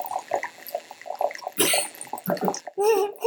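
Wine gurgles and hisses as it is poured through an aerator, a short, airy rush of liquid that swells loudly and then bubbles off, with faint voices murmuring around it.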